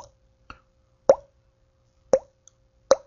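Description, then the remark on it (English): A voice imitates water drops with mouth plops made by tapping the cheek against the teeth beneath to get a resonant chamber: several sharp, resonant pops with a quick pitch bend, spaced irregularly, three strong ones and a couple of softer taps, with no talking. “There's this one, which is me tapping my cheek and kind of hitting the teeth underneath them to kind of get a resonant chamber.”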